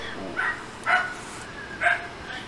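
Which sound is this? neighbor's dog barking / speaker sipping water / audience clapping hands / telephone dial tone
neighbor's dog barking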